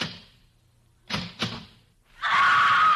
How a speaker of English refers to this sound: The beautiful stenographer in the insurance office is just coming to work. She's punching the time clock.